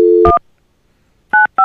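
A steady telephone dial tone gives way to three short touch-tone dialing beeps, one right after the tone and two more after a pause, each a bright two-pitch chirp with no voices.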